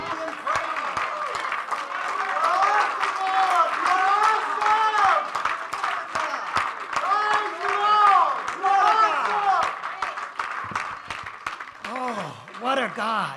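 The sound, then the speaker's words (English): An audience claps their hands to God in a dense, uneven patter that runs steadily throughout, while many voices call out and cheer with rising and falling tones over the applause. “Come on, why don't you clap your hands to God?”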